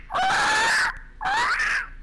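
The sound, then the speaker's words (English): A person imitates a parrot with two loud, shrill squawks in quick succession, each rising and harsh, with a short pause between them and no talking. “Do your parrot impression.”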